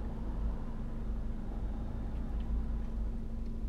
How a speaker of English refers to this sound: Cars zooming by. Buses.